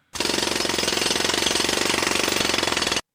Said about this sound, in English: Yes, drilling or construction sounds. The 3rd most annoying sound on the planet.